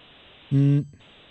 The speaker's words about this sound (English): A lot of hissing.